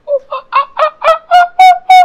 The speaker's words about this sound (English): Oh, there's monkeys. In the distance. Many of them echoing throughout the woods.